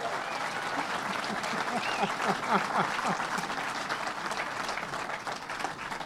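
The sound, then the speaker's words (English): Steady applause from an audience for the commissioner, a dense wash of clapping that holds at a fairly even loudness for several seconds, with a few indistinct voices mixed in around the middle. “So, but let's give the commissioner another round of applause.”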